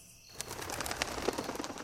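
A flock of pigeons bursts into flight, a dense flurry of rapid wing flaps rising in a rustling, fluttering wash with a few faint chirps, loud and steady for under two seconds.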